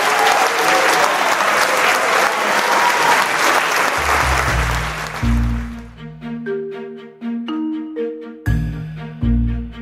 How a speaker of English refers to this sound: Ladies and gentlemen, please give a round of applause.